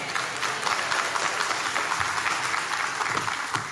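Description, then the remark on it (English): A church audience applauds steadily throughout, clapping started by the speaker, a dense wash of many hands clapping at a moderate level with no voices standing out. “I shamelessly started my own clap.”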